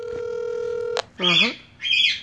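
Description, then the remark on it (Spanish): A steady electronic dialing tone from a call placed on a cell phone hums for about a second, then cuts off with a click, followed by two short, bright chirping bursts. “Yo lo que voy a hacer, bien sencillo, te llamo ahora mismo, vete, te voy a llamar otra vez mismo del celular de mi mamá.”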